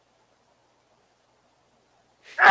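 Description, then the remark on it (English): After a stretch of near silence, one sudden, loud sneeze bursts out right at the end. “Bless you.”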